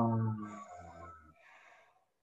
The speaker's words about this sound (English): Breathing in through the nose into your heart space now, opening up your heart space. And then breathing out through your mouth.